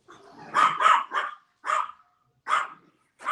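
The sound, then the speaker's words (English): A dog barks repeatedly, a quick cluster of three or four barks followed by single barks spaced about a second apart, loud and clear with no talking. “Well, okay, dog.”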